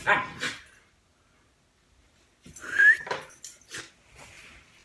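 Puppies whimper and squeak in short, high-pitched bursts: a brief flurry, a second or so of quiet, then a louder run of squeals and whines. No one speaks.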